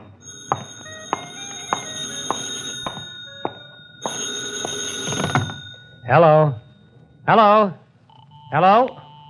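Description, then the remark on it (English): A telephone in a phone booth rings three times in loud, warbling bursts, each separated by a short pause, following a stretch of clicks and clattering handling noise. “Where's your phone? In that booth over there. Hey, maybe that's your call now.”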